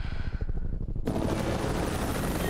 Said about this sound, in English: You hear that? Hey, relax. Ooh. There are choppers flying here all the time, you know that. And this place is well guarded.